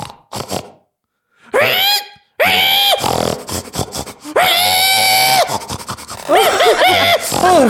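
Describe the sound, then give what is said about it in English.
A person imitates a pig, letting out a series of loud, high-pitched squeals in several drawn-out bursts separated by short pants and pauses. “Squeal like the good little piggy you are.”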